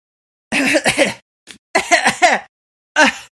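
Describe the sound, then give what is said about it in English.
A voice coughs and clears its throat in a few harsh, broken bursts, fairly loud, with short pauses between them. “That's how I cough now.”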